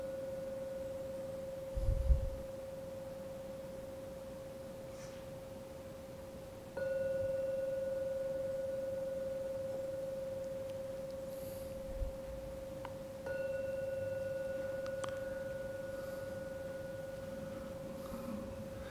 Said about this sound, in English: In a couple of moments, I'll ring the gong 3 times as usual. After you've heard the 3rd ringing of the gong, please come out of the meditation.